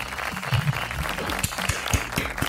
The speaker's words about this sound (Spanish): Pero aplausos.